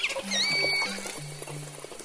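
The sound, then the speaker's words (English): Offshore killer whale vocalizations: several overlapping high, sweeping whistles and squeaky calls ride over lower droning tones, chattering continuously for a couple of seconds with no talking. “We know the least about offshore killer whales, but we think they eat mostly fish. They travel in big groups, 30 strong, and they're noisy.”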